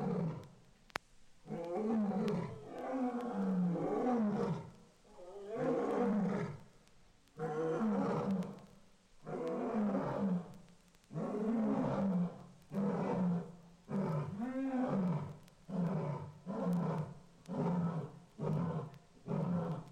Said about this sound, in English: After feeding, lions sometimes enjoy a roaring session. At the end of this series of roars, a sharp ear can pick up the squeaky little roars of two new cubs as they try to imitate their parents.